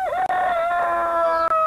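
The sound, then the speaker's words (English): Voices from the children's show Bod imitate a chicken with a loud, drawn-out, crowing-style call that holds a steady pitch, with two brief breaks, to coax Farmer Barleymore's chickens down from the trees. “Pretend to be a chicken with me, and they may come down to us.”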